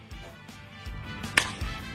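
A single sharp, loud crack of Yankees international prospect Jason Dominguez's bat striking a ball rings out midway, sudden and bright against a low, steady background rumble.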